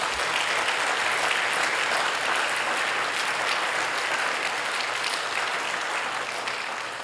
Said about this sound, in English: And so let's give those that served a round of applause, please.